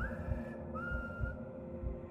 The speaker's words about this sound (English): I whistled up but got no reply.